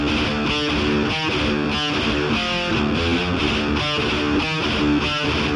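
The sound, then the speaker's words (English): A loud, heavily distorted electric guitar chugs through chunky power chords in a steady driving rhythm, thick and saturated in a classic 1980s rock tone, with no one speaking. “To more of a 1980s distorted guitar sound.”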